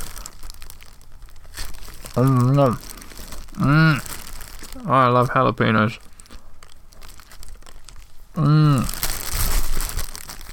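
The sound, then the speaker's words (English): Plastic packaging of a jalapeño sourdough bread from a local bakery crinkles and rustles in bursts throughout, with a louder crunchy stretch near the end, while a person speaks briefly in between. “Sorry about the plastic noise.”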